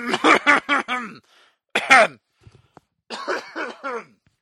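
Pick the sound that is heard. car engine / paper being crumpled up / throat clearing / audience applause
throat clearing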